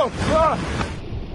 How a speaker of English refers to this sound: Massive waves crashing ashore in Southern California sent people running Thursday.